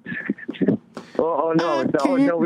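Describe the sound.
A man hums a melody in a steady, sustained voice after a few brief choppy vocal sounds, the tune carrying clearly and fairly loud up close.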